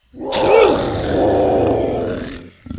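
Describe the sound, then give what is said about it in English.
A single loud, sustained dinosaur roar sound effect with a harsh, growling texture, rising sharply at the start and holding for about two seconds before cutting off. “One of them, a mean-looking velociraptor, snapped at Buck, and Buck roared at it.”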